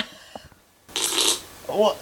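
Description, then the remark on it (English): A breathy, sputtering fart from an online video of a man with underpants on his face bursts out for about half a second, then a short, rising squeaky toot follows, sounding a little tinny as if played back through a speaker, with faint voices before it. “He's called …, if you want to look him up. … on YouTube.”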